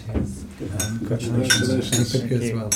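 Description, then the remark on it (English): Several bright glass clinks ring out, scattered across a few seconds as in a toast, with voices murmuring underneath. “That's right, so let's get the glass that's a nice surprise.”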